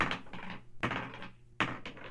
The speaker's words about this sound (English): That sounds like a lot of very heavy dice. Like, that's honestly the most threatening sound ever when you just hear, like...